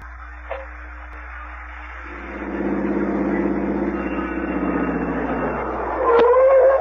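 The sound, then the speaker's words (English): A car engine turns over and settles into a steady rumble after a faint click, then a sharp clunk and a brief higher whine near the end. No voices. “Is this the car?”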